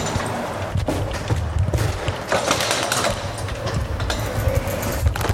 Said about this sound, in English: The thing is, though, as you might be able to hear, I also have my bike. Click. There goes the door. As I open it, this is going to be tricky to manage to get this bike out of the door.